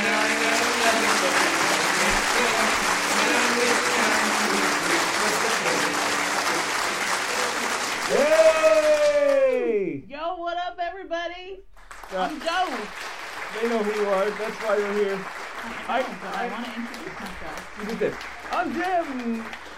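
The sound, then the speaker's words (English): Loud, dense applause mixed with cheering voices fills the first nine seconds, then breaks off abruptly as a person starts talking over quieter crowd murmur. “Nothing. No one applauded at all.”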